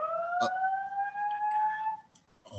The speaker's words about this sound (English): Wow. What is that? Oh my God, it's a fire alarm going off.